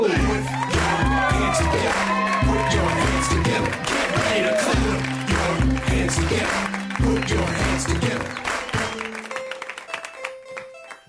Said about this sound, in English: Again, more clapping.